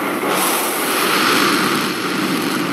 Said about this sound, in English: So this was actually the noise that the four RS-25 engines made in March 2021